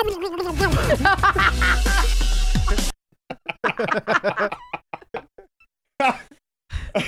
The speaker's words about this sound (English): Hit me with that turkey sound. Gobble, gobble, gobble, gobble.